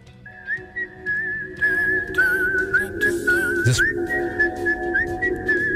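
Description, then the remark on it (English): A clean, pitch-steady whistled melody by a session whistler rides on top of a song released in 2014, tracing a wavering tune over a steady low beat and backing instruments, loud and up front throughout. “That's a session whistler. There's no way that guy's in the band. Pitch perfect.”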